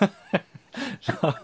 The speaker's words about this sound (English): Coughing on the necks of everybody as you go by them.